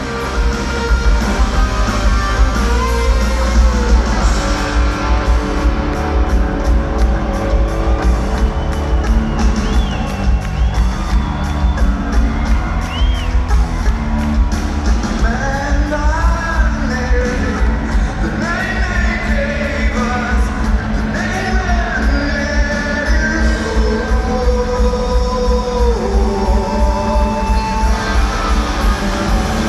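A large concert crowd sings along in unison to the bridge of a song, a loud sustained mass of voices rising and falling with the melody over steady music, with occasional whoops and shouts breaking through; a bootleg recording made from within the audience.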